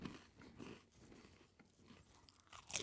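Dry crunching and chewing of saltine crackers during an attempt at the 6 saltines in 60 seconds challenge, with irregular bursts of crackly mastication and a sharper, louder crunch near the end. Nobody speaks.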